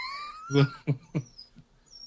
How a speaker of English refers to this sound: Oh, even the dog's right. Like, come on, man. The dog's even like disappointed.